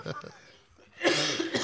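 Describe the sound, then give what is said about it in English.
A single loud cough bursts out right after a moment of quiet speech, one harsh, breathy expulsion with no follow-up coughs. “That's just one, not a coughing fit.”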